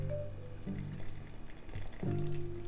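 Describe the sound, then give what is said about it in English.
Wet, squishy liquid sounds with steady trickling and dripping water as cooked campanelle pasta is lifted from the pot while the water drains off, moderately quiet. “We drain the water for now, but I need a little water for the pasta.”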